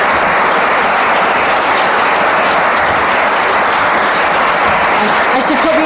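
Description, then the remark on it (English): Sustained applause from a sizeable audience for a panel at an event celebrating National Women in Engineering Day, a dense steady wash of clapping that stays loud and even for several seconds, with no pauses or breaks. “A round of applause if you will.”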